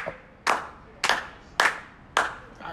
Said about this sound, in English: One more set of 4 claps, please.